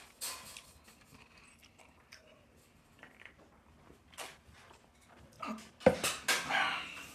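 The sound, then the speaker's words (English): Dog commotion in a house: scattered clattering and scuffling, building to a cluster of louder, sharp bursts near the end, with no talking. “She's running off to see what is up with the dogs.”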